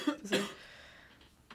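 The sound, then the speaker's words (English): An abrupt cough: a short rough onset quickly followed by a louder, harsh burst, then near silence with a faint breathy catch at the end. “Great use of the cough button there”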